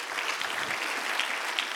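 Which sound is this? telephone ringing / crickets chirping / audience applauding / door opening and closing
audience applauding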